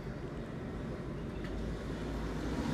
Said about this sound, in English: We live on Lakeshore Drive, lots of people, lots of traffic, beautiful view, and lots of traffic. You can hear some trucks, truck driving by.